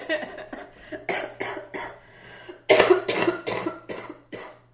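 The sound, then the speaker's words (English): A sick person coughs repeatedly, a rapid string of harsh, raspy bursts that grows louder and more forceful midway before tapering off, with no talking. “So if I start to lose my voice or start coughing, you'll know why.”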